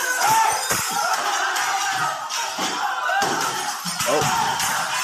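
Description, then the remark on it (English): A rioting mob shouts and roars nonstop, loud, while a few heavy thuds and crashing impacts break through the din as the mob smashes up a Hindu temple in Pakistan, destroying statues. “Here's some fun footage of the mob showing the world just how they deal with a precocious prepubescent third grader.”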